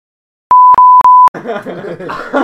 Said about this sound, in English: You're not going to cut shit, right? No, I'm going to bleep that out.